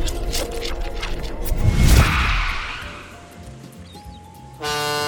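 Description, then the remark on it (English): A ship's horn toots with a loud, steady, buzzy blast near the end, following a rumbling crash-like surge and a thin sustained tone; no one speaks. “A ship? I thought we were meeting someone who flies airplanes.”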